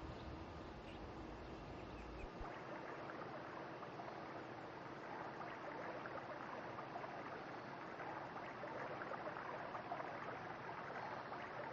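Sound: flowing water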